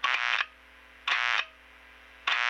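Harsh electrical buzzing from a light bulb on a dimmer, picked up by a microphone held up to the bulb as the dimmer is turned on, heard as three loud, raspy bursts separated by a quieter steady hum, with no one talking.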